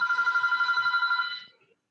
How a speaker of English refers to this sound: Okay, phone has stopped ringing.